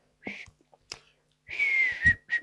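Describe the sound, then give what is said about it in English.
Someone attempts to whistle a song melody, producing breathy puffs of air before a thin, wavering whistled note holds briefly and fades, with no talking. “I can't whistle, yeah. Sorry.”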